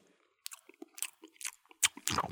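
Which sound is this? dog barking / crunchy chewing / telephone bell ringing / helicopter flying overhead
crunchy chewing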